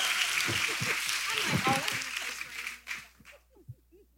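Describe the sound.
An audience claps their hands for the two hosts of a panel in a dense, steady burst of applause mixed with whoops and chatter, then the clapping fades out, leaving a few scattered voices.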